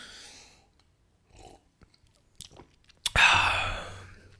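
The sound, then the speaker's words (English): A few soft mouth and handling noises, then a sudden slurp as someone sips hot coffee, drawing in air noisily for about a second. No one speaks. “Let me take one more sip.”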